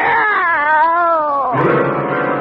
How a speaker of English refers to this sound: Meow! It's a cat, Miss Brooks. I brought him over to keep Minerva company.